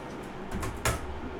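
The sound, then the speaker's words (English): A few soft, quick clicks of computer keys being pressed as a YouTube channel address is typed in, irregular and quiet, with no talking. “I'm typing in right now to figure it out.”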